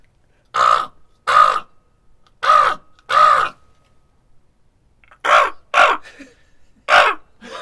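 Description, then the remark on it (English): Human voices imitate raven calls: seven harsh, croaking caws, loud, in loose pairs separated by brief silences. “Can you guys do a raven?”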